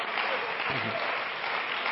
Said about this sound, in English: And everybody said, in Jesus' name, clap your hands and shout unto God with the voice of triumph today.